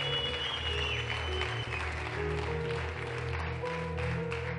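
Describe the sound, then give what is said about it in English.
An audience at a church service claps steadily for people as they come forward, a dense, continuous wash of applause, with sustained low musical tones playing underneath the whole time. “Oh, just keep clapping for them as they come.”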